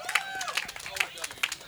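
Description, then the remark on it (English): A brief round of applause for the announced winner of Category C, Belgians, in a homebrew competition: scattered, uneven hand claps from a small crowd, crisp and fairly loud, with a murmur of voices underneath. “Hey, round of applause here.”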